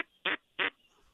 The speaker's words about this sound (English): It's a female. Female pintail. We don't want to kill her.